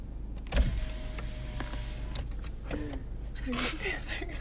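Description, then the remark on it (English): A car's power window motor whirs as the window lowers: a steady, mid-pitched electric hum lasting over a second, with a few soft clicks and thumps over a constant low engine rumble. “Open the window.”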